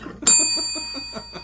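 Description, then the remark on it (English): A single bright bell ding, an ending bell, rings out sharply, its clear metallic tone lingering and slowly fading while voices keep talking underneath. “That's the ending bell.”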